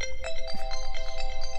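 A timer goes off, with a bright electronic melody of quick repeating notes over a sustained tone, steady and fairly loud, with no voices.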